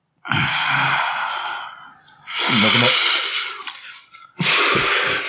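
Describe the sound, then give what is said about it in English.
A person draws in a long, deep breath, followed by breathy exhales, miming a drag on a cigarette without actually smoking. Three airy, loud breath bursts, with no talking. “I'm not smoking a cigarette, I'm just breathing in deeply. I like to mime cigarettes.”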